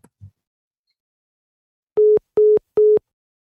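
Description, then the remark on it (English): A soft click, a brief pause, then three short, evenly spaced electronic telephone line tones sound loudly as a woman hangs up the phone after a call, like the pulsing beeps after a phone is hung up. No voices. “hangs up the phone and begins preparing dinner for her family”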